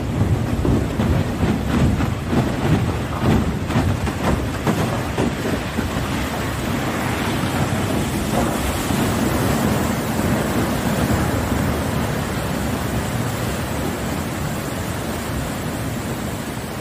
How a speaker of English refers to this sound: This dam hadn't been opened in years, so take a look at the result when it was finally opened.